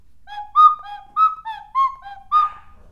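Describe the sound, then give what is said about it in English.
A novelty rock whistle blown in a quick run of about eight short, chirpy notes that alternate between two pitches, bright with a bird-like warble, and no voices. “I must show people that I own a fucking tech deck and some praying hands and a fucking pack of cards and a rock whistle, you know?”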